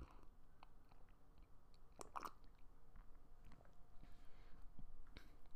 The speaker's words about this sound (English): All right, man, I'm finna take a big sip of this